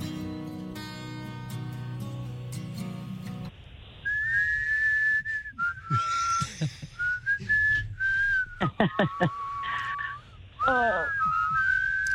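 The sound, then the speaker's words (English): A song, one of the artist's more chilled-out ballads, played for a 'First 5 Notes' guessing game, opens with a few seconds of instrumental music, then a clear, prominent whistled melody takes over, gliding between notes over a sparser backing with occasional percussive hits. “Is there whistling?”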